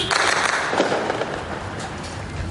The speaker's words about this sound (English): Just as we were with that convoy up the road, quite a lot of gunfire broke out. We're hearing what sounds like sniper fire. Someone's clearly not observing the ceasefire.